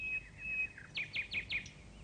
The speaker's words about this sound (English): All around them in the tops of the trees, the nightingales were singing. As they listened, the owls knew that the singing of nightingales was far sweeter than the singing of owls,